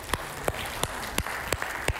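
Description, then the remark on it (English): Slow, evenly spaced clapping in response to the announcement of the Go West campaign: six sharp, crisp claps about a third of a second apart over a steady low background hiss, with no voices or cheering audible. “So yeah, you can cheer for that for sure.”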